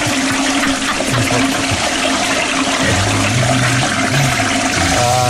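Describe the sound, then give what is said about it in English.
A toilet flushes loudly, a steady rushing gush of water filling the whole clip, with gurgling tones swelling near the end as the bowl refills. “Can I flush that then? We've got all that. Flush it then.”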